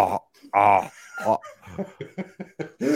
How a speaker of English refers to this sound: Can you burp on all of the vowels? Showing your skill set as a performer.